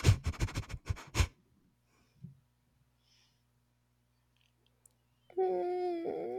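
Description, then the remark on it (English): A dog scratches and pants by a door in quick rhythmic bursts, then falls quiet before a drawn-out, wavering whine rises at the end. “You hear in what sounds to you like broken English because it's a dog.”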